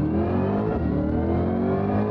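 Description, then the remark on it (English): A Chevrolet Corvette Stingray's standard 6.2 V8 engine revs steadily and loudly for about two seconds, a deep, rich rumble with dense harmonics whose pitch climbs slightly. No one speaks. “It's got the standard Stingray 6.2 in it.”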